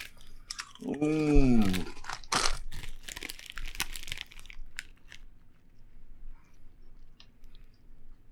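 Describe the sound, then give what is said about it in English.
Loud crunching of Doritos tortilla chips being chewed in irregular bursts, with a short voiced murmur near the start and quieter crunches trailing off toward the end. “All right, so that's how we're easing into this episode, the sound of us crunching.”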